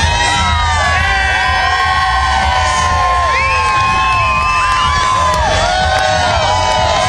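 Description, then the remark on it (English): A large concert crowd on the VIP hill cheers loudly and continuously, with high whoops and shouts rising above a dense roar of voices, sustained for the whole stretch. “As you hear the crowd, come on!”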